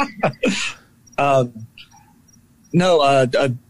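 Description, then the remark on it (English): Several short chirping bursts separated by pauses, with two longer trilling phrases that sound like a voice imitating crickets rather than real insects. “Are those crickets in the background?”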